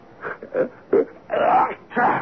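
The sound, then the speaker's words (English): A sneeze builds up through a series of short, halting voiced gasps, then breaks into two longer, louder bursts, moderately loud with no other talk around it. “Gesundheit.”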